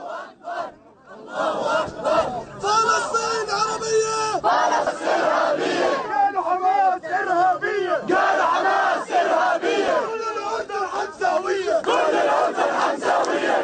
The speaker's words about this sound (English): And this is why, because here in Jordan, take a listen to this. This is outside the Israeli embassy. And listen to what they're chanting just a little bit ago.